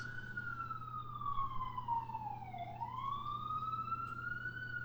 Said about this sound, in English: So you're gonna add in two sirens playing right now. Perfect. So I'm going to give you like 5 seconds to annoy the listeners.